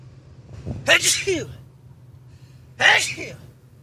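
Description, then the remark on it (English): Two sharp sneezes, close and loud, about two seconds apart, the first preceded by a quick inhale, over a low steady hum. “We think that I had a sneeze or something. Hold on a second.”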